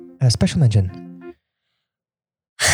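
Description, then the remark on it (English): A person lets out a loud, drawn-out vocal yawn lasting about a second, followed by a pause and then a short burst of noise. “If you yawn again, I'm going to hit your pineapple away from the table.”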